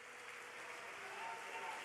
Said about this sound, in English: And you know what it tells you to do when you clap your hands? To get your mouth open. And to shout with the voice of triumph.